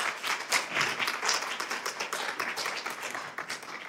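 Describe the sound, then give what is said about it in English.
A crowd gives the Lord a hand clap in the morning, a dense, steady patter of many hands, continuous and fairly loud for a few seconds with no talking over it. “Come on, let's give the Lord a hand clap this morning for His goodness.”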